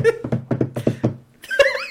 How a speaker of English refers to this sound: Let me walk in on the wooden planks. Oh, let me also walk in.